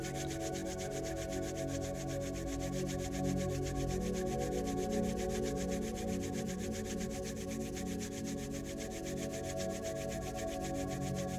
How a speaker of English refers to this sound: Begin by sitting on a chair comfortably and rub your palms together until they become warm.